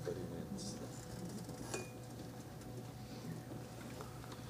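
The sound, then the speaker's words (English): A single meditation bell strike rings out midway, a bright clink with a short high tone that fades quickly over a steady low hum and murmuring background noise. “Last entries into the bell.”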